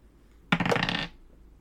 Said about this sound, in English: I have new dice. They're really, really, really pretty. I'm gonna roll one now.